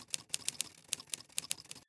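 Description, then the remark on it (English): Typewriter keys tapping in a quick, uneven run of about a dozen sharp, bright clacks, clear with no voices, ending in a sudden stop. “The keys were tapping away, and slowly, painfully, I read the words.”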